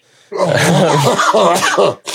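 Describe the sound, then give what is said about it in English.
A man coughs hard and raspily after taking a huge bong hit, in a continuous fit lasting about two seconds, loud, with throaty hacking and strained breaths and no clear speech. “Every time he coughs, he like gains another like 7 years of life.”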